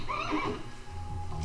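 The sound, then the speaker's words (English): A horse whinnies briefly in a quavering, high-pitched burst, then fades into a low rumbling background with no one speaking. “We see some, I guess, children running and someone on horse chasing them.”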